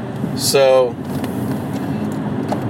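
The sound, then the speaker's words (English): Steady low road rumble of a car getting onto a freeway in heavy traffic, with a brief tonal, harmonic burst near the start rising above the constant engine and tire noise. “This traffic's ridiculous getting on the freeway.”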